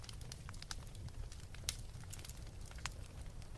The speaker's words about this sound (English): And those are the thoughts I have when I think about fire, and I listen to the crackle of a fireplace or a bonfire.